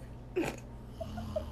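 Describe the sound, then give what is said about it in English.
A voice imitates a mother's snore: one short, breathy rasp followed by a few soft, wavering moan-like hums, quiet, with no speech. “Like, so the way that Mom snores, she kind of, like, moans.”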